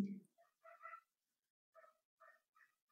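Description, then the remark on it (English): A dog whimpers softly in the background, a series of short, high-pitched whines coming in uneven bursts with brief pauses between them, faint. “Dogs are rooting for you.”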